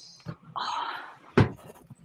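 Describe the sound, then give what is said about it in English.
A dog, Bernie, almost six years old, makes a drawn-out whining sound for attention, then lets out one short, sharp yelp, with faint shuffling noises around it and no talking. “This is my dog, Bernie.”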